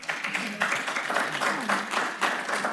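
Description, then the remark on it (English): An audience at a candidates' forum applauds steadily, a dense wash of many hands clapping at once, fairly loud and sustained throughout, with faint voices murmuring underneath. “So, audience, I'd like to remind you to please not clap during the presentation.”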